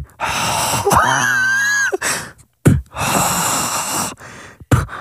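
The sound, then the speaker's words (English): A voice imitates Darth Vader's mechanical respirator breathing, with loud, raspy breaths drawn in and pushed out in a slow rhythm, plus a brief whistling tone in the first breath. “Do the breathing again.”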